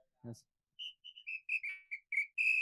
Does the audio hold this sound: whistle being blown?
yes